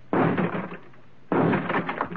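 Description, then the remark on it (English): Two loud, heavy gun blasts strike about a second apart, each followed by a short rattling decay, as gunshots blast out a door lock. No voices. “I'll have to blast the lockout.”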